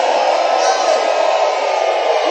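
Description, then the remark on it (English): An audience shouting together in a steady, loud roar of many voices that holds at an even level for the full couple of seconds, with no single voice standing out. “Those of you who are shouting, you are interested.”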